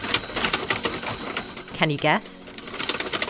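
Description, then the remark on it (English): The Wake Up Machine, a DIY wall-mounted robot working with an alarm clock, whips its mechanised rubber arm around, slapping a sleeping woman in the face over and over in a rapid, clattering rhythm, with a whirring, ratchety motor sound behind it. A person briefly speaks over the repeated slaps. “It's the sound of a mechanised rubber arm slapping a sleeping woman in the face.”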